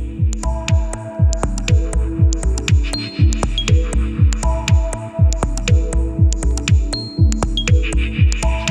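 An electronic music track plays with a throbbing, pulsing bass beat repeating steadily, layered with sustained synth tones and occasional high pinging notes, fairly loud and without any voices.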